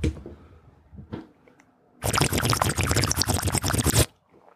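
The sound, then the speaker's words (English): A voice imitates a bong hit with a loud, gurgling, bubbling rush lasting about two seconds, preceded by faint breathy mouth noises and followed by quiet. “Dude, can I still make this sound that sounds like a hitting a bong?”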